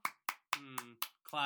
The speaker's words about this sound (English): Claps.